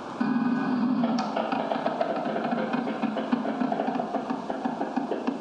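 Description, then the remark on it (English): A steady, loud roar of car engines runs throughout, threaded with a dense, rapid crackle of gunfire as two cars being driven exchange shots. No voices are heard. “That's 2 cars shooting at each other.”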